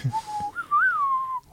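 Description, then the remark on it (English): Someone whistles a short, clear melody, the pitch stepping up and gliding back down over a second and a half, with no talking alongside. “It's a whistle though, right?”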